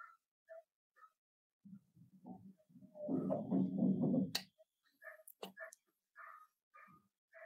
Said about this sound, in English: And I hear a dog outside that's barking, so we'll let that be in the space.